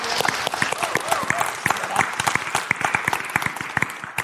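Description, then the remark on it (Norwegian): An audience applauds steadily, many overlapping sharp hand claps forming a dense, continuous patter at a moderate loudness for several seconds. “Skal vi gi dem en skikkelig applaus?”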